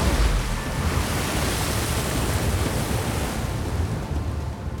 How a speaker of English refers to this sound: Waves echoed out from the staff, starting small, then building to an immense height. The water thickened, its splashes turning to vicious sloshes.